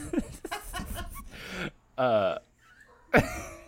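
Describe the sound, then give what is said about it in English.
A dog smelling a person barks and whimpers excitedly, a flurry of yelps followed by a drawn-out whine and one last sharp bark. “That dog is going berserk, Baker.”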